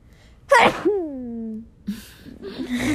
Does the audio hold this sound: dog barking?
no